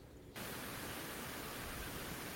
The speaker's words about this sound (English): Ooh, we're getting bad static.